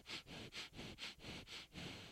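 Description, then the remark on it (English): A rapid series of about five loud, exaggerated sniffs, with short breathy pauses between each inhale. No talking. “I just sniff her. I just try to get as much of her aroma as I can.”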